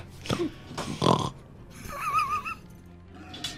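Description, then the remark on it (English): A person imitates an angry pig with their voice, making a few grunting, snorting noises, harsh bursts followed by a wavering squeal, fairly loud with short pauses between them. “Angry pig. Pig noises. Yay, pig noises.”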